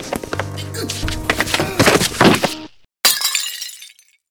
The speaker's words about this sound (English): You broke the water pitcher! Let me up! Let me up! I'm soaked!